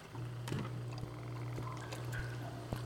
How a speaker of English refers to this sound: what's the dripping? The sump pump? Turn it off. The basement will flood.